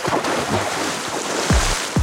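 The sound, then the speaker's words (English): Steady rushing water noise fills the scene, broken by two heavy, low thumps of water near the end, a loud splash in the Arctic sea near Bear Island. “She smiled at the memory, then was brought back to the reality of the Arctic landscape by the sound of a loud splash.”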